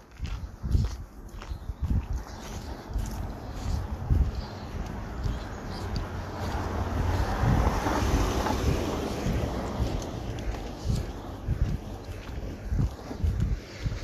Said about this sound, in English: Jaguar, quite a nice car, driving quite slow, probably checking me out.